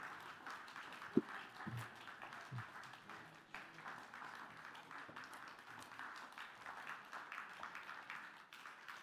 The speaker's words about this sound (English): Okay, and what we need to do is we need to start applauding. A nice steady sort of clap, please. Just keep that going. That's great.